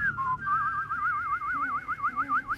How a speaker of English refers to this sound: That was my whistling.